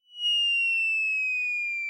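A cartoon falling-whistle bomb-drop effect: one loud, high, pure whistle that glides steadily downward in pitch for about two seconds, with no explosion following.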